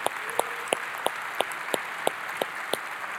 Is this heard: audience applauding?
yes